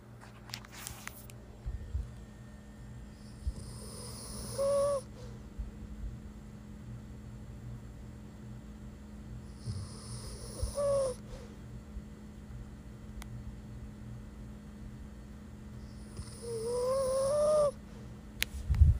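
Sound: dog snoring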